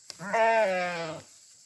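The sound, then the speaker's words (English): A single loud bleat from a gray and black Romanov sheep of a small flock on a farm in Randolph County, West Virginia, lasting about a second with a steady, wavering tone, preceded by a faint click and otherwise alone without any voices. “suddenly became the owners of a small flock of gray and black Romanoff sheep.”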